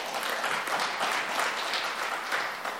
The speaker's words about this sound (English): Yeah, you can give them a hand.